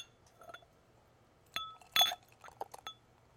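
Several bright glass clinks with short ringing tones, two louder strikes close together followed by a few lighter taps and faint rattles, as a drink is handled and poured. No one speaks.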